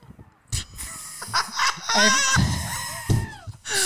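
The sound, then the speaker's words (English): A goat screams in loud, wavering cries that rise and bend in pitch, broken up by short noisy bursts and brief gaps over a few seconds. “The intro wasn't done yet. Sorry, I didn't realize the that. The goat has to scream at you.”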